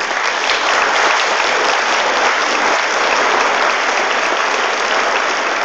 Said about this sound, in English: Take a moment to celebrate that right now. I'd like you to give yourself an applause for that.